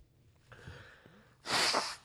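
A soft, hissing intake of breath leads into a single loud, rough burst of air through the nose, lasting about half a second before cutting off. No one speaks.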